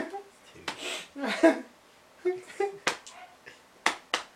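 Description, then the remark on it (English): A hand slaps against a jeans-covered knee several times, sharp, dry smacks at irregular intervals, bunching up toward the end, with some soft murmuring voice sounds in between. “I can hear my hand slapping my jeans.”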